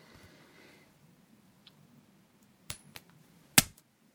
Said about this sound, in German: Das heißt, wenn der Kopf oben ist, sagst du, alles muss raus. Wenn die Zahl oben ist, sage ich, alles muss raus. Dann werfe ich jetzt die Münze.